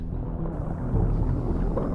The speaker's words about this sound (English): As soon as she said it, there was a low rumble that quickly grew to a roar. It was the sound of water rushing inside.